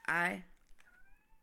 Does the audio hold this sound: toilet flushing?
no